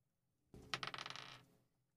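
Dice rolled for initiative in a tabletop game drop onto a hard table and clatter in a quick burst of sharp, bright bounces that rattle for about a second before settling, fairly loud with no voices.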